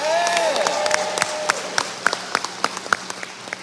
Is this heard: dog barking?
no